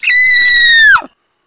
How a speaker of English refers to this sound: Sorry, I get when I get excited, I squeal like a retarded seagull.